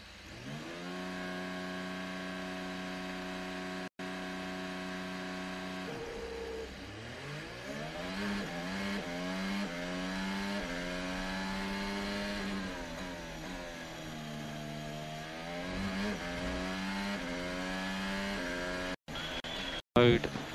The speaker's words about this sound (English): Last car is now approaching the grid.